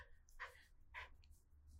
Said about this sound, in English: Ooh, another big yawn. So, speaking of requirements, you must do that. Whenever there is a big yawn, you must acknowledge that there was a big yawn. This is our little piggy. He is a little potbelly pig.